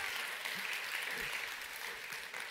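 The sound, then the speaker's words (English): Steady applause from a crowd clapping for the speaker's wife on his 29th wedding anniversary, a dense continuous patter of many hands clapping at an even level with no voices standing out. “You should actually be clapping for my wife.”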